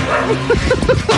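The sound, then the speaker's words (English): Several street dogs in Bhopal, India, heard in a played video, bark and yip in quick succession, a rapid run of short, sharp calls over a steady background hum. “Look at how many wild street dogs look there people is.”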